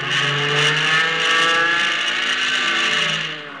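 A loud aircraft engine roars steadily for a few seconds, its droning pitch rising and falling slightly as the plane loops to get behind another aircraft, with no voices.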